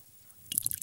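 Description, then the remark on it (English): Beer is poured into a glass, making a short, fizzy, crackling splash that starts after a brief moment of quiet and continues to the end. There is no talking. “Pour us a beer.”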